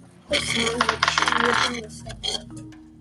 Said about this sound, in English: Roll your 20-sided dice.